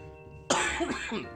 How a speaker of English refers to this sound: I still have a little bit of this lingering cough, even though I am cured of the COVID. But this cough is sticking with me for a little bit, so bear with me, if you will.